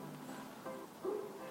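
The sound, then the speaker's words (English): A neighbor's dog barks faintly, two short tonal barks about half a second apart, the second slightly louder, over a low steady background hum with no talking. “Neighbor's dog barking at shit.”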